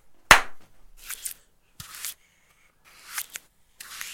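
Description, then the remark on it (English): Slap and paint-stroke sound effects: one loud, sharp slap rings out, followed by a series of softer, hissing paint-stroke swishes and smacks in uneven bursts with gaps of silence between them. No one speaks. “Is that the two slaps and you painted?”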